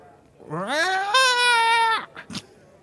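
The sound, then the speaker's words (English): A loud, drawn-out yowl from a cat whose tail is stepped on, rising sharply in pitch and holding a strained, piercing wail for about a second and a half, followed by a couple of brief clipped sounds. “That is a, when you stand on the tail of a cat.”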